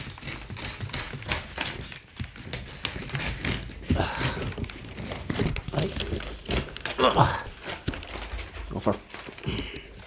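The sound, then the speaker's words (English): Scissors snip and crunch through wrapping paper in a quick, irregular series of crisp cuts with papery rustling, while someone talks faintly underneath. “I'm cutting now by the way”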